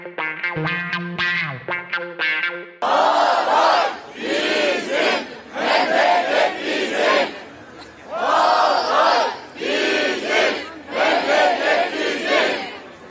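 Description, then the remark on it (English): A large crowd on a march in the southern province of Hatay, Turkey, marking the one-year anniversary of the earthquake, chants loudly in repeated rhythmic surges. Each swell of voices rises and falls about every second or two, after a few seconds of sustained tonal, musical sound at the start. “That was noise from, or that was sound, I should say, from the southern province of Hatay, a march there today, to mark the one-year anniversary of that catastrophic earthquake that struck 11 Turkish provinces as well as Syria on this day last year.”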